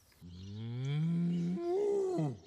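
A cow lets out one long, loud moo, rising in pitch and then bending upward near the end before cutting off, with no talking.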